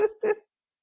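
A dog barks twice in quick succession, two short, sharp, close-up yaps, followed by silence.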